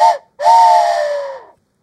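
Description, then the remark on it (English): A train whistle sound effect sounds twice: a brief toot, then a longer sustained blast with a breathy, harmonic tone that sags in pitch as it fades. It is loud, with no talking. “We're all aboard the hype train.”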